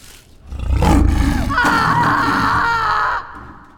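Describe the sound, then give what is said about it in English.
A loud lion roar rumbles low and heavy, then gives way to a rough, high, sustained cry that holds for a couple of seconds before cutting off abruptly. “We're talking about the kinds of screams people make because they suddenly realize a hungry lion just snuck up behind them.”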